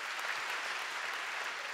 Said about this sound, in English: That's awesome. You can clap for that.